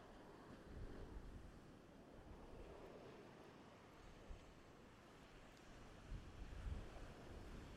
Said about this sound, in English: The waves that are coming in are, I want to say, 1 foot to 2 foot high. Probably not enough for a surfboard.